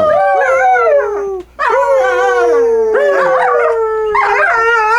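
A dog howls loudly, drawing out several long, wavering howls that slide up and down in pitch, with only a brief break between them and no talking.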